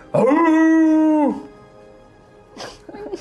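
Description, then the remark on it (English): A dog lets out a loud, drawn-out whining whimper lasting about a second, then falls quiet before a shorter, rougher yelp or bark near the end. No talking. “you see these two dogs at the top of the thing, and they look down on you with these dead eyes.”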